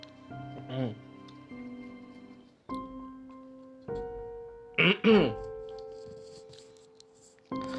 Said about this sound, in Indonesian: Ya, kenapa aku batuk? Karena aku pakai suara dalam ya, biar kedengaran asik di podcast. Cuman ini bukan suara asliku sih.